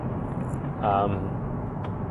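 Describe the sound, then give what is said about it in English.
Steady low rumble of road noise from inside a moving, low-riding manual car, constant throughout, with a brief voiced sound rising over it near the middle. “If you feel, if you can hear like some of the road noise, it's because my car's a little low and you can hear everything.”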